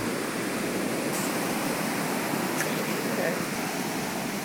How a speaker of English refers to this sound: And right behind them is a big trailer park and then the river. And the river had actually already come up into the trailer park and was, I could actually hear the river on our street.